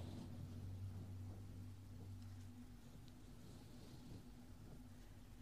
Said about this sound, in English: Yes, please pardon the traffic sounds. Nothing I can do. I apologize.